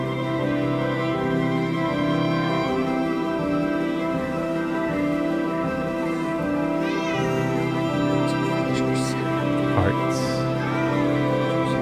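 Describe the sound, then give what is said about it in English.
Several cats meow and yowl in a dense, overlapping chorus that keeps going without a break, loud, with a few rising cries standing out near the end. “Cats flying over our heads.”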